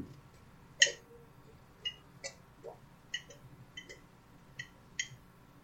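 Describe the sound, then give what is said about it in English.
Someone loudly gulps and slurps water, a series of about eight short, wet swallowing clicks at an uneven rhythm, with no talking. “That was me loudly drinking some water. Slurp.”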